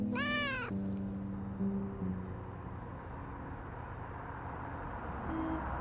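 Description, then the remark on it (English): A cat, Mr. Pickles, lets out one drawn-out meow that bends up and then down in pitch, followed by a steady low rumbling hum with faint tonal drones and no talking. “It's fridge time, feline.”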